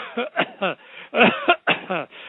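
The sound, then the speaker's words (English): Several people cough together on command during a prayer to cast out spirits, in a ragged cluster, a quick series of harsh, overlapping coughs and throat-clearing bursts, fairly loud, with some chuckle-like breaths mixed in. “Everybody cough.”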